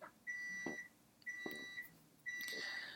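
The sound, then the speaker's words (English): A kitchen timer beeps in three sustained electronic tones, each lasting about half a second with short gaps between, loud with faint clatter underneath. “And I have another timer going off.”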